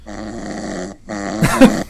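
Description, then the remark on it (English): Snoring recorded on a voice-activated voice recorder, played back: two long, harsh, buzzy snores separated by a brief gap, the second rougher and louder, with a growl-like rasp and no talking. “What is that, like a voice recorder? It's voice activated. Oh, so in this case, snore activated.”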